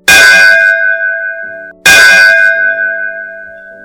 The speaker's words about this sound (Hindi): तभी उसके कानों में घंटा बजने की आवाज आई।